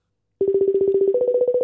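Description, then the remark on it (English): Telephone dialing tones as a call is placed to a man: a steady electronic beeping that pulses rapidly after a moment of silence, stepping up slightly in pitch partway through. No one speaks. “Okay, should we call him and find out? Yeah, let's call him.”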